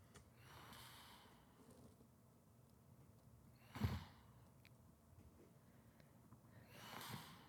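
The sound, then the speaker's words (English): Snoring recorded on a phone video, with heavy breathy inhales and a sharp snort near the middle, repeating every few seconds. The sound is quiet, with no talking. “So you fell asleep filming me snore.”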